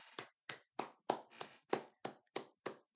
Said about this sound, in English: I want you guys to give yourselves a round of applause.